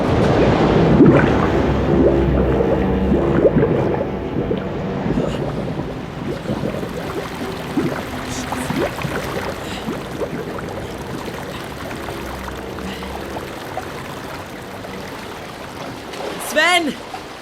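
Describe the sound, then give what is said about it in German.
Loud, steady rushing of a torrential river current roars for the whole stretch, a dense churning wash with a brief gurgling burst near the end. “Im letzten Moment, in der letzten Sekunde, spülte der reißende Strom sie hinaus in den Fluss.”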